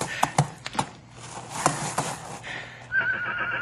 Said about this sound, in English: Stop whimpering, you ornery colt.